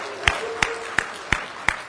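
Slow, steady clapping for a man's 40th birthday: five sharp claps at an even beat, about three per second, with a faint murmur of voices underneath and no loud cheering.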